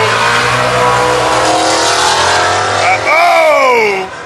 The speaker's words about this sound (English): We're watching cars get squirrely here on Woodward Avenue, drag racing on the street as we do this. Fox Buddy Mustang for the win.